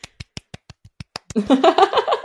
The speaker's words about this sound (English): You can't see it, but I'm doing that. I can hear you clapping. Thank you. And it's the little round of applause.